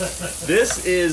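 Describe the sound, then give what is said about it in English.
Onions sizzle steadily in a frying pan, a continuous crackling hiss with brief faint tonal sounds rising over it partway through. “I'm sizzling up some onion, and then I cut up some summer zucchini to give us some of that color.”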